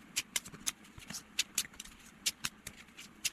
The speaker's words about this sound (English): And then I'm going to give the cards a quick shuffle.